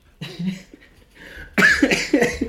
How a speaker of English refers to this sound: I did a little burp there, if anyone picked it up.